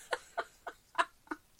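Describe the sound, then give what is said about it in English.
A French rooster, a rescued bird, crows outside the studio through opened windows: five short, sharp calls in a quick, steady series, each a bright harsh burst of similar loudness, with the fourth slightly stronger. No one speaks. “If you hear a French rooster, it's because we had to open up the windows in the studio.”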